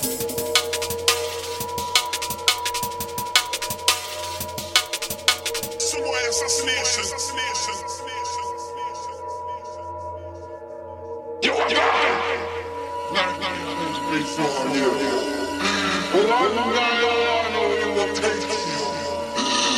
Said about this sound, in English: But this one's happens to be one of my favourite old school D&B soldier tunes, man. He's got that kind of rhythm about him, man. I just like his stuff. Let's hear this one raw.